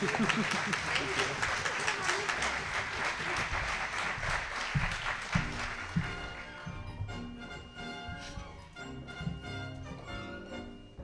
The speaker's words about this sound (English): And let's have another round of applause for Walt Makaborski.